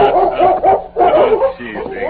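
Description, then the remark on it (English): A large German shepherd named Chief barks a welcome as a rider dismounts at the Circle M ranch house in northern Texas, repeatedly in quick, excited bursts, fairly loud, with a few higher yips mixed in and no pauses of silence. “As Tonto dismounted, the Colonel's dog, a large German shepherd named Chief, circled Scout, barking a welcome.”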